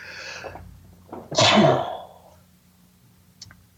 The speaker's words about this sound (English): One sec, I'm going to sneeze.